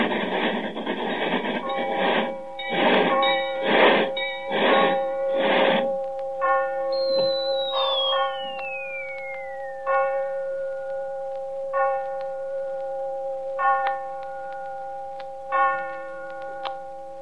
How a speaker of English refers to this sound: Six hours and 20 minutes later, we are in London. As we enter the station, the clocks are striking.